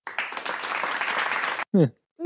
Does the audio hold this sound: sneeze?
no